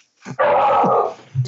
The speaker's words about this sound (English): That dog says happy birthday, too. It's a very religious dog. Is your dog named Jesus? We named the dog Jesus.